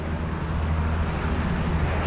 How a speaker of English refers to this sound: Helicopter's going overhead.